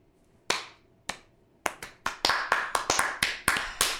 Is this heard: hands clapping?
yes